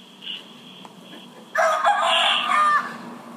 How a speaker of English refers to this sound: What is that? It's my rooster. Oh, cool. Nice.